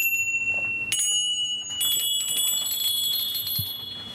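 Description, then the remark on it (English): Small bells, including a schooner's bell and a bell from a goat's collar, are struck twice in quick succession, their bright metallic tones overlapping and shimmering as they sustain and slowly fade. No one speaks. “This is a schooner's bell. And then this one was one from one of his goats, on this goat's collar. And then there's other bells.”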